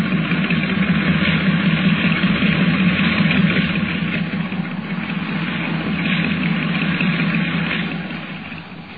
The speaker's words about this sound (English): Under the sound of it, that engine needs attention.